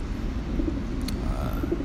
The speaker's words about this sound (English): Got some pigeons. I'm out on this balcony. Got some pigeons. Oh, damn, this pigeon's laying an egg. Where I'm staying, there's these little pigeons hanging. They're sitting on an egg right now. I don't know if you can hear that.